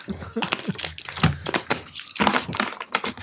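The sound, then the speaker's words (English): Papery riffling and snapping as a deck of playing cards is shuffled, in several quick bursts with short pauses between them. “If we're shuffling cards and stuff about it, do not come to our houses.”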